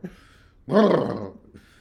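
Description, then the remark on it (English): A person imitates a dog named Bruno growling in its sleep on a bed, one rough, throaty growl lasting about half a second, loud, set between quiet stretches with no speech. “And I'm looking over and I'm like, oh crap, this dog's going to kick my ass while he's asleep.”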